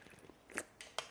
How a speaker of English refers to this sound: Whoa, sipping that La Croix.